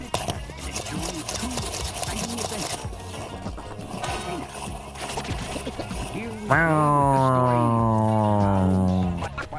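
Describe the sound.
A spinning Powerball wrist exerciser whirs into a loud, buzzy hum rich in overtones, its pitch gliding slightly like a revving motor, after a stretch of muffled voices and handling noise.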